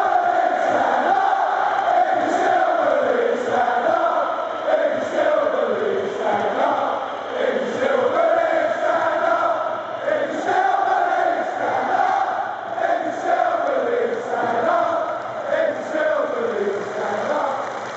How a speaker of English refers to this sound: So we're into the second half of the match, and once again, the Craven Cottage crowd was more than playing its part, with a chant that will forever go in the history books at Fulham.